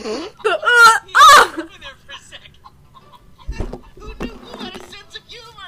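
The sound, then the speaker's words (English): A chicken lets out three loud, harsh clucking squawks in quick succession, then falls quiet while people talk softly in the background. “Hey, look, a chicken.”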